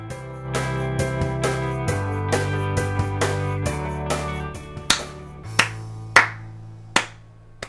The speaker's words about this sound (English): There's my golf clap for myself.